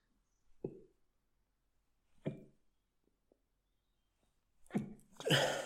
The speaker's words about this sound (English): I am sneezing a lot today. Anyway, sorry, go on ahead. Seasonal allergies.